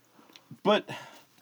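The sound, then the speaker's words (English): A person briefly imitates a horse with a short, wavering whinny-like vocal burst, fairly loud, followed by a softer voiced trail and small mouth sounds. “No, horse noise.”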